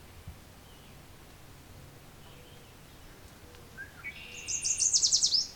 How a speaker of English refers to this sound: far off I can hear Veery, a northern water thrush.